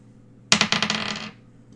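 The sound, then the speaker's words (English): A 20-sided die clatters and rolls across a hard surface, a quick burst of rapid clicking taps that fade out over about a second. Fairly loud, with no talking. “I think that we have to roll the die to see who asks this question first. Okay. A little dice roll ASMR for you.”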